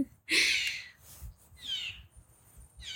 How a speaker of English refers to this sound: Oh, look. There's so many birds up here in the trees. Hi, birdie.